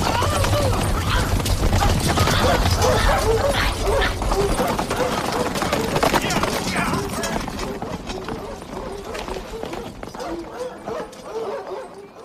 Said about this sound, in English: There's a distinct sound of dogs barking.